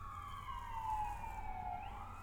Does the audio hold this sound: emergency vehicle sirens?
yes